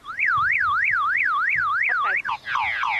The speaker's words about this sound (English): My alarm started going off on the bed when I sat on the bed. We don't have an alarm on the bed. Well, I don't know. I sat on the bed, and that started going off.